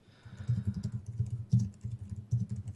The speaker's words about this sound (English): That's some silence. Yeah, I was listening to you type.